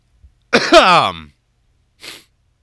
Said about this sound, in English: This is easy listening for some poor bastard, especially if they're a germaphobe, hearing me coughing into their ear canal.